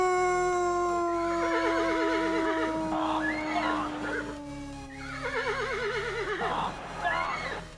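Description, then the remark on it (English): Two loud horse neighs in a row, each a long quavering whinny that trembles and slides downward, set over a steady low droning hum. “The horse is there.”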